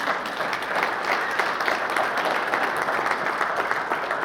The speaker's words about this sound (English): Amen. Hallelujah. Give him a hand clap. Amen.